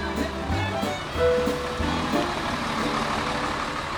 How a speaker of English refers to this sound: That's a huge truck. Oh, I thought we were done. No, we are done. I just wanted to get the truck sound at the end.